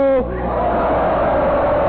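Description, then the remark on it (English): A single loud shouted call cuts off almost at once, and a large audience answers by yelling "ho" in unison, a sustained, roaring yell that fills the space and holds steady to the end. “I want to hear a poem that makes this audience yell, ho!”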